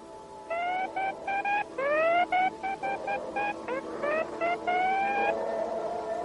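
A steady, buzzy mid-pitched tone keys on and off in a quick run of short and long beeps, a secret Morse code signal, over a faint hiss with no talking.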